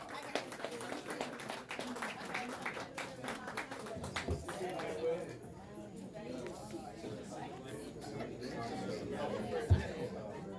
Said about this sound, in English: Okay, welcome to the stage. We'll get on and put your hands together. Clap, y'all. Clap.